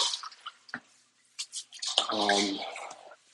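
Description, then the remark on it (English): Water splashes and drips inside an enclosed tank, with short knocks and a louder sloshing burst near the end, echoing in the hollow space while a person has their head inside the tank. “Excuse me, I have my head inside this tank here, so there's some splashing and some banging.”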